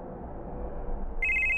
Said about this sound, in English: Spurlock's phone rings.